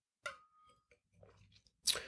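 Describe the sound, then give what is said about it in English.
A quick sip of a drink: a sharp slurp, soft wet mouth and swallowing sounds, then another brief airy gulp at the end. “Quick sip there.”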